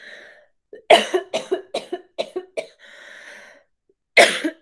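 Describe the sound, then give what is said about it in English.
A fit of coughing from a cough that has lasted since having COVID: a strong cough, then a rapid string of about seven shorter hacking coughs, a brief wheezy breath, and one more forceful cough at the end. “No se me ha ido la tos desde que me enfermé.”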